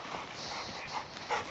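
A dog whimpers and lets out a couple of short, high yelps over a steady background rumble, the sounds brief within a second and a half.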